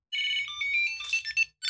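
A Tile Bluetooth tracker on a set of keys, set off from a phone app, rings out with a bright, chirpy electronic melody of rapid high-pitched tones, fairly loud, playing a short tune before a brief pause and starting again.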